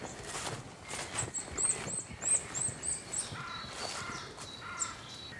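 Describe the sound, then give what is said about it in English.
A wood warbler, one of several present, sings a high, quickening series of thin notes that run into a trill, with other birds calling and footsteps crunching along beneath as someone walks south. “There's more than one wood warbler here.”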